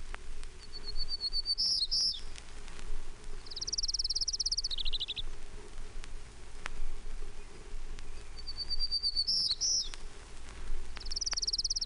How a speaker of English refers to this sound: Townsend's Warbler, 1, 3.